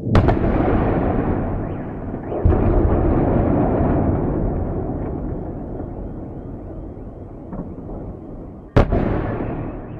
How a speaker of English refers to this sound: We begin in the capital of Ukraine, where the quiet city was filled with the sound of large explosions this morning.